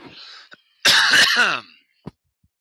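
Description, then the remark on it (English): A single harsh cough with a raspy throat-clearing quality, from a scratchy throat and muffled by a hand covering the microphone, lasts under a second, followed by quiet breaths and a couple of soft clicks. No one speaks. “Because of my scratchy throat, I'm covering my mic to cough.”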